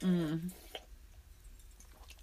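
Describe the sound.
Crunching of an ice cube being chewed: a short voiced hum at the start, then a few faint, irregular crisp crackles and clicks spread across the rest of the moment.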